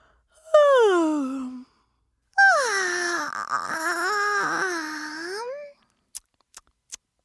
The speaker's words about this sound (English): Sparky copied Fireball and started yawning.